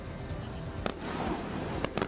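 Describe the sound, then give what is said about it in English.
Fireworks burst amid a steady rumbling wash, with a few sharp cracks standing out, one near the middle and a quick pair toward the end. “That includes the free fireworks show that the city will host at the end of Saturday's Jazz Festival performances.”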